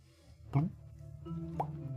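Two bubbly plops as bubbles from someone who has gone underneath the water reach the surface: a deeper gulp and then a higher-pitched bloop about a second later, over a steady low watery rumble.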